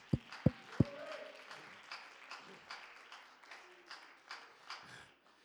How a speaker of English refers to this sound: Hallelujah. Give the Lord a great big hand clap.